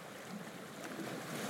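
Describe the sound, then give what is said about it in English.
A ferry's engines rumble in a steady, low drone, slowing as the ferry comes into port, mixed with the broad wash of water, continuous, with no voices. “The ferry engines slow because it is coming in to port.”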